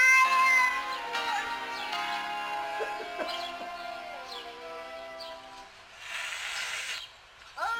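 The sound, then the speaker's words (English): A cat yowls and meows loudly, drawn-out wailing cries that bend and slide in pitch one after another, ending with a brief breathy hiss. “So that's called Ode to Yelling Cat.”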